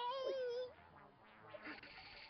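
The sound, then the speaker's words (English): A single drawn-out, loud cat meow with a wavering pitch, fading into softer breathy, hissing noise for the rest of the moment. “So Cringer's scared of another cat?”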